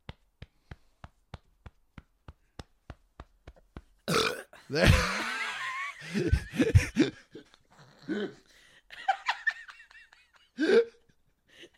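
A quick, steady series of light thumps, as a person hits themselves to bring up a burp stuck in their chest, gives way to a loud, drawn-out, croaky burp, followed by bursts of laughter and some voices.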